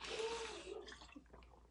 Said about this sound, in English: Let me drink some water. I said in the beginning, I'm trying to do this cleanse, so I have to drink this whole bottle of water before I can eat dinner, so.